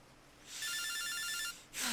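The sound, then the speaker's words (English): A telephone rings once with a loud, high, warbling electronic trill lasting about a second, with no voices, then a short burst of hiss follows as it stops. “Pick up the phone.”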